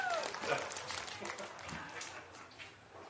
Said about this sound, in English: That was a good cheer. Yes. I can hear you all the way in here.